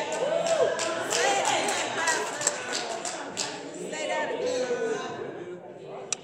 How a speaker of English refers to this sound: Oh, you see, you're clapping, but watch this. You clapping, but I'm going to stop you from clapping.